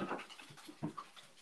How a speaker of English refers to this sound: Did you hear my dogs get up and move?